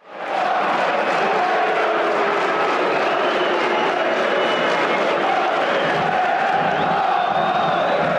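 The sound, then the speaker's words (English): A big football crowd at a Charlton versus Barnsley match roars continuously after a goal, Barnsley fans cheering and Charlton fans booing, blending into one loud, dense wall of noise that holds steady for about eight seconds. “Barnsley fans delighted, Charlton fans booing.”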